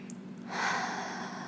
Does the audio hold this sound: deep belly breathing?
yes